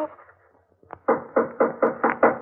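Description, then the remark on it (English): Six loud, evenly spaced knocks on a door in a quick, steady rhythm, each a sharp hollow thud, following a faint murmur of voices that fades out. “I'll see who it is.”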